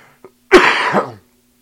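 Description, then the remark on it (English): A single loud, harsh cough, rough and breathy with a second push near its end, preceded by a faint short click and followed by silence; a person who is still sick coughing. “But if you hear me coughing or sounding short of breath, yeah, I'm still kind of sick.”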